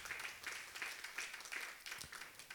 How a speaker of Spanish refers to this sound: Que ese aplauso sea para Dios.